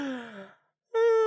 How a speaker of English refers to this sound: How about now we make a big yawn, and then the yawn together. To avoid it. So, now we make a big yawn.